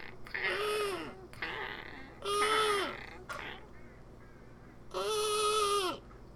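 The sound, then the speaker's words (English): A voice imitates a harsh, croaking bird call: three drawn-out, raspy cries with a few shorter squawks between them, loud against a faint background hum. “There's, like, just this bird, too. I don't even know what kind of bird it is, but it's got the worst voice.”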